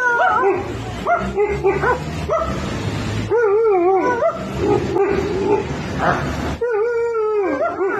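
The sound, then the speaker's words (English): A dog whimpers and barks in a steady run of high, wavering cries broken by short yelps, continuing loudly throughout with no pauses for talk. “I mean, they might as well give the actual dog voting rights at this point.”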